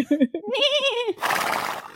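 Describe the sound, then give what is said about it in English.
A horse whinnies, a loud quavering neigh that wavers and falls in pitch, ending in a rough, breathy snort. “Leave that goat alone. Leave that horse alone.”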